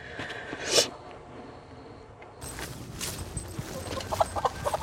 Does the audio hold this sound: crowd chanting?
no